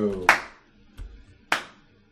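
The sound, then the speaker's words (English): A slow clap: two sharp, loud hand claps spaced more than a second apart, with a faint dull knock between them and a brief bit of voice just before the first clap. “No slow clap from the peanut gallery?”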